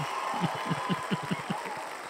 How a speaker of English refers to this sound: That's the actual crowd from Wells Fargo.